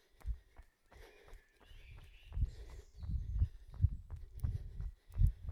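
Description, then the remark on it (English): Running footsteps on a road: a steady, even rhythm of dull, low thuds, roughly two per second, growing a bit heavier partway through, with faint high chirps of birds above. “Very different sound of my feet.”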